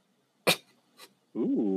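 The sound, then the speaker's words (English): A small female dog gives a sharp snort, then a softer huff, and follows with a drawn-out, wavering whine, with no one talking. “She's a dog, you sick fuck.”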